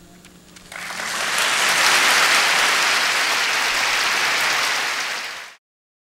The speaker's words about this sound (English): As you guys could hear, she got booed, she got cheered, kind of